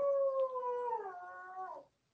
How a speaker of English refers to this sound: as we're interrupted by a dog there. It happens, I guess. He howls, right? We're all at home.